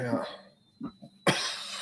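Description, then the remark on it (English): Coughing: two short, muffled coughs followed by a sudden, much louder hacking cough that breaks into a harsh, breathy rasp. “Whoa, I hit a cough vein there.”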